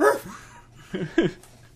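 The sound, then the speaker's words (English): A dog barks three times: one bark, a short pause, then two quick barks close together. The barks are moderately loud and stand alone, with no talking. “he kept barking in there.”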